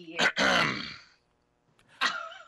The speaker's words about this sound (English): That was like a space dad cough, man.